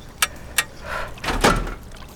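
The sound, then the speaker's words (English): Two sharp metallic clicks as a yellow-framed suit locker release handle is pulled downwards, then a heavy mechanical release as the large locker door slides open with a whooshing, rumbling hiss, fairly loud, no voices. “Pull the locker release handle, framed in yellow, downwards.”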